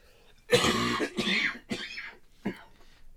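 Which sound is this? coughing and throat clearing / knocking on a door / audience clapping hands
coughing and throat clearing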